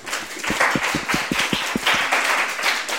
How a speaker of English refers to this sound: So sure. Please give these gentlemen a nice round of applause.